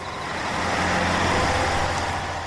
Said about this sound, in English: That's the third bus in a row that's not stopped. They must have seen us, surely. It's like they don't even want to stop, complains Bittu. And they're not even full.